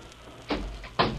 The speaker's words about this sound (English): When all of a sudden, the door busts open, and these four fellas come into the car.